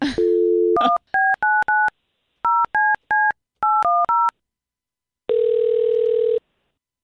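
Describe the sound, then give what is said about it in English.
A steady dial tone hums briefly, followed by a quick series of clipped touch-tone beeps in uneven bursts as a caller is dialed back, then a flat, buzzy tone takes over for about a second. Loud, with no voices. “No, call him back. Definitely call him back.”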